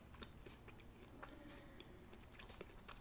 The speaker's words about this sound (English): I guess that's me, as you just stare awkwardly and chew.